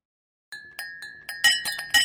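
Bright glass clinks ring out alone, about seven quick taps that speed up and grow louder, each leaving a clear sustained ring.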